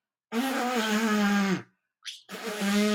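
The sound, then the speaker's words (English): Two loud, buzzy raspberries blown with the lips on a pet bird, a long one and then a shorter one, separated by a brief high-pitched squeak like a bird's chirp. “I give her a raspberry.”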